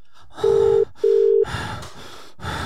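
Heavy, loud breathing right up close, rough gasping breaths repeating over a phone line, with two steady electronic ringing beeps sounding early on.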